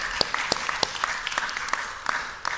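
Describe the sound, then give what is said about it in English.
An audience claps together, a dense spread of overlapping hand claps with sharp individual slaps standing out, holding steady at moderate volume for a few seconds. “Amen. Yeah, you can clap for that.”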